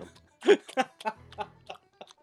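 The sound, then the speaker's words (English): Munching on chocolate treats, a string of wet, crunchy chewing bursts in an irregular rhythm, fairly loud and with no talking over it. “At the other sounds of me munching away. Did you hear that?”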